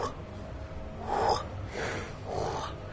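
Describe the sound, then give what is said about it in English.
A voice imitates the wingbeats of a hornbill, a big bird with a wingspan of about a meter and a half, with three breathy, rushing whooshes in a slow, steady rhythm. They are moderately loud, and no words are spoken. “And all you could hear were the wings going...”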